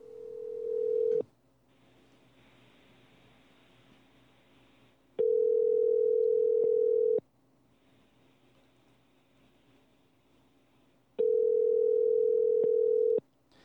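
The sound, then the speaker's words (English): A phone ringback tone while calling a man: a steady, loud electronic hum repeating in two-second bursts separated by about four seconds of quiet line hiss, three rings in all, with no voices. “We'll give him a call and see what's up, and let's find out.”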